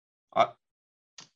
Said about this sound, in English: as you turn around and leave, you hear this obnoxious knocking sound. It's like explosions. And they start to convert into knocking, like knocking on a door.